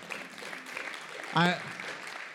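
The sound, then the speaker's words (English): A church audience claps steadily as a 'clap offering' for Paul, in a dense, even wash of applause, with one short voiced cheer or shout rising out of it partway through. “I think this is probably a little silly, but I thought this morning we should just give him a little bit of a clap offering.”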